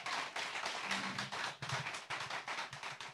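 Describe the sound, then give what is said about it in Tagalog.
An audience at a church service claps in praise to the Lord in a loud, steady rhythm, many hands striking at once in a dense, continuous patter that carries on without a break. “Lakasan mo, palakpak mo sa ating Panginoon.”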